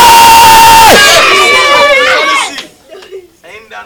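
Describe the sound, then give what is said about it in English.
A large audience shouts "they will see" together at the person next to them in one loud, sustained burst that lasts about two seconds, then breaks off into a few scattered voices and quieter murmurs. “I say scream on that person and say they will see.”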